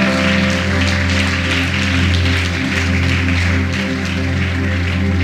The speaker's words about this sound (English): Why don't we give them a hand clap while they come down? That's right.